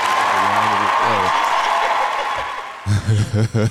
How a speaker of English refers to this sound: We're going to give a round of applause for that